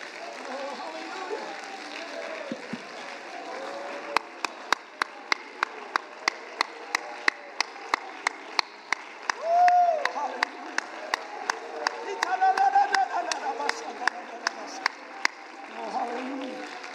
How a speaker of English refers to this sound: Come on, for about 10 seconds, let's praise him. Come on. I don't think it would even hurt you if you clap your hands and you simply said, Jesus, thank you for loving me.